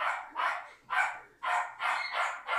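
A dog lets out a string of whiny, moaning barks, about six in an uneven rhythm, moderately loud, with no one speaking.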